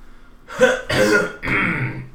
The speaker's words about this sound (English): So let me clear my throat.